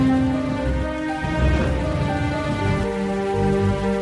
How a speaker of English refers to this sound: Another sad night, as he sat there thinking, a big storm began. Lightning was striking and the sound of the thunder was echoing in the castle.